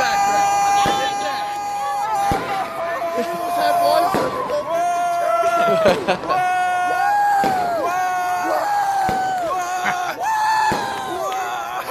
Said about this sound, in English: all of a sudden, a firework goes off